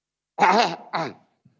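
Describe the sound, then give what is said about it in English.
A man clears his throat in two quick voiced bursts, a longer rough 'ahem' followed by a shorter one, then silence. “After relieving yourself, tanahnaha, clear your throat.”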